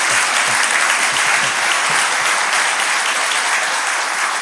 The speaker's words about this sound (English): And church, can we just give AJ one more round of applause?